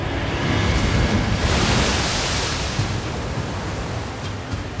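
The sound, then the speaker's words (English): Churning water and rolling waves wash steadily in a dense, roaring rush, swelling slightly mid-way and holding a full presence throughout with no voices. “Once again, Satan was falling in all directions through infernal heat and blistering cold until he found himself swallowed by what felt like thick water.”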